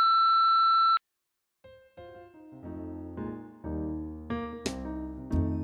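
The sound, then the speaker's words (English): A loud, steady answering-machine beep sounds for about a second and cuts off sharply; after a short silence, sustained musical chords enter and swell. “It's possible we'll screen and leave your message at the tone.”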